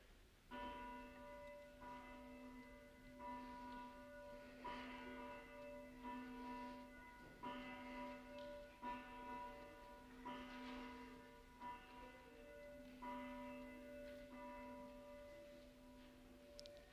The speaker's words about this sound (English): So today we ring the communion of saints bell. Listen, can you hear it?